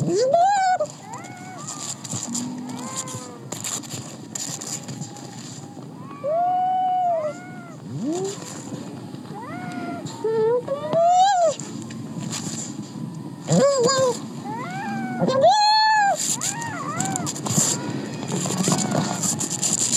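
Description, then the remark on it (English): A seal pup gives repeated wavering, bleating cries, rising and falling in pitch like a plaintive mew, some short and some drawn out, over a steady murmur of background noise and splashing. “So I have a little video here, a little audio of a seal pup.”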